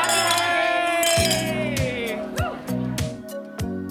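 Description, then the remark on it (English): Glasses clink together several times in quick succession in a New Year toast, bright ringing taps, with a faint murmur of voices in the background. “Well, cheers, everybody.”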